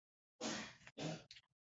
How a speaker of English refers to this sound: That was her sneezing. Bless you, baby.